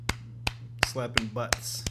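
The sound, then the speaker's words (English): A soft golf clap: six light, crisp claps at a slow, steady pace, with a brief murmur of voice between a couple of them and a low hum underneath. “A little golf clap for you because I don't want to blow up the mics.”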